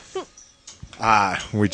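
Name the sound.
dog barking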